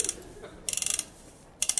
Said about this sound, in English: Someone wind the clock forward.